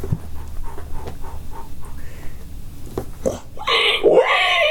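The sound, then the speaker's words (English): A pig grunts and pants in quick, rhythmic huffs as it runs up and bites a person's leg, then the sound swells into a louder, harsher burst of noise near the end. “The pig ran up and bit my leg.”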